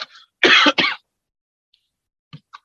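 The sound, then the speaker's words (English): Two loud, harsh dry coughs in quick succession, then a pause and a couple of short, soft throat-clearing sounds, with no talking. “I have a dry cough.”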